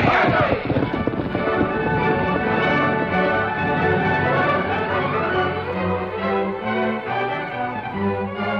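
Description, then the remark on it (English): Thoroughbred horses' hooves pound rapidly in a loud, continuous clatter, galloping off with riders as the rhythmic beats blend into a dense rush of sound with music swelling underneath. “Now, men, get your guns and mount the thoroughbreds.”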